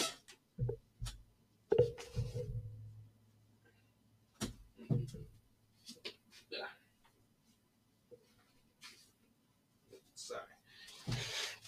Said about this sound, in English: I had to close the door for a second.